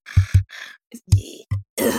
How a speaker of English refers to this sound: Are you breathing heavily? Is that you? Is that you breathing heavily?